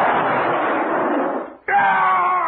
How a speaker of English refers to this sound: There was a sudden sharp explosion.